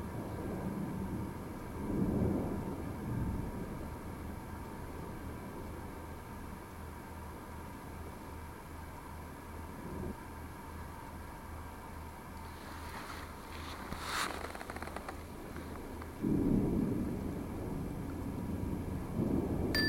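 thunderstorm with rolling thunder

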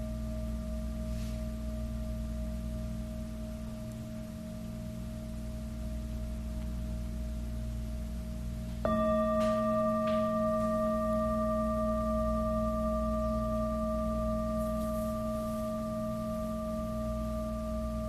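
meditation bell ringing

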